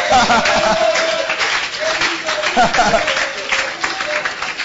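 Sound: audience clapping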